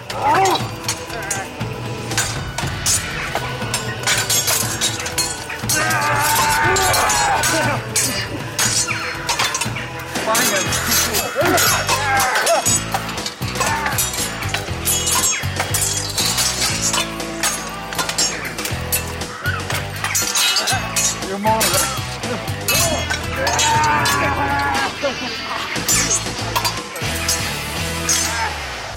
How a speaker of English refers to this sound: Spear and axe ring out as raw as guitar riffs.